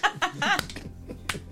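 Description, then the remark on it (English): Two sharp, crisp finger snaps ring out about a second apart, with bursts of laughter at the start and a low hum underneath. “Yeah, let's start snapping.”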